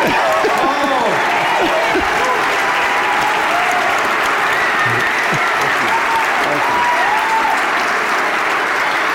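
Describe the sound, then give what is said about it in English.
Loud, sustained applause from a sizable audience for several seconds, a dense, steady wash of clapping with faint cheers and voices mixed in, applauding the call for Curtis Hill to run for governor. “So, figured, yeah. I can applaud that.”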